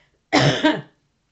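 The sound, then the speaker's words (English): Two loud, harsh coughs in quick succession, like someone choking briefly after swallowing wrong, with silence before and after and no talking. “I apologize. I swallowed wrong.”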